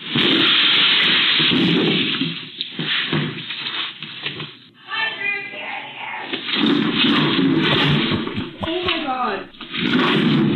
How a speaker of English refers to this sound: This video is going viral of a wild deer breaking through the window of a Minnesota butcher shop, crashing into everything, trying to get out. Here's a quick clip of the mayhem.